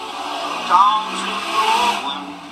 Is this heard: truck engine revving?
yes